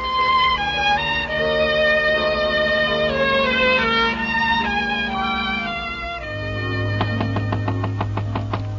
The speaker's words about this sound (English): why are you knocking at the door?